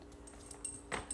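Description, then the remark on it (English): A female dog that wants to play gives a brief, quiet yip toward the end, with faint high whining sounds around it and no one speaking. “oh, I'm sorry, my dog is just not giving me any help right now. She wants to play.”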